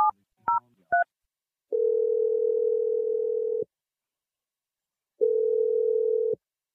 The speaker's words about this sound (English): Let's dial the phone number and hopefully he picks up. Here we go.